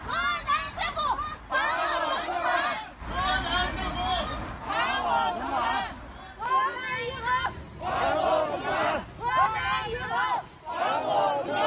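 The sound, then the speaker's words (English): A large crowd of bank customers in China, gathered in front of a provincial Banking and Insurance Regulatory Commission to demand their money back, shouts slogans such as "We beg the state to help us" in unison, loud rhythmic bursts of chanting voices repeated again and again with short pauses between each phrase. “As part of the demonstration, some of them held banners shouting phrases like, "We beg the state to help us.”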